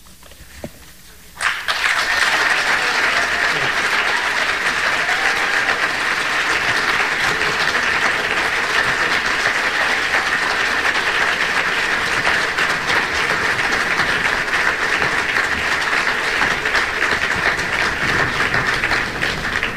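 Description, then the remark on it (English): An audience member applauds during State Senator Lesniak's comments, when he mentions that New Jersey has not approved marriage equality. After a second or so of near quiet the clapping breaks out abruptly, then continues as a steady, dense, loud clatter right to the end without letup. “During State Senator Lesniak's comments, one member of the audience applauded when he mentioned that New Jersey has currently not approved marriage equality.”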